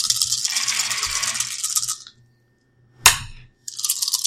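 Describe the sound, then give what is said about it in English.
Three red dice rattle for about two seconds as they are rolled for a game character's discipline check, then a sharp clack lands after a pause, followed by another burst of rattling. No one speaks. “And what do you want me to roll against? Four red dice.”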